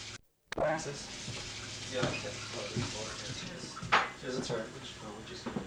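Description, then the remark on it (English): Water splashes and trickles steadily as it's poured into drinking glasses, with a brief clink near the end and faint voices murmuring underneath. “Can I get you some more water here?”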